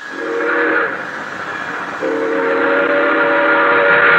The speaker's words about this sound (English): An express train roaring by. It doesn't stop in San Amado except on signal. Prairie coyotes and screaming train whistles night after night, every night.